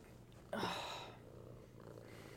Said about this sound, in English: My son is being insanely needy right now. You'll probably be able to hear his purrs on the mic. He looks so cute today.